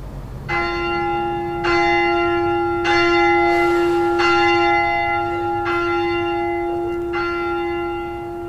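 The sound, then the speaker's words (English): Church bells are rung by a bell ringer playing an abstract piece in an irregular, unconventional sequence, each strike blooming with rich overtones over a steady sustained hum, loud and resonant with no voices present. “It's kind of bell ringer doing a kind of abstract piece, really. It doesn't sound like the normal bell ringing.”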